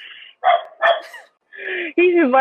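A dog barks in a quick series of four or five loud bursts with short pauses between them. The last few barks stretch into higher, whiny yelps.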